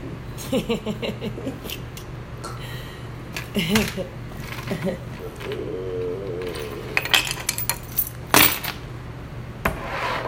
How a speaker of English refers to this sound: Tossing my keys around.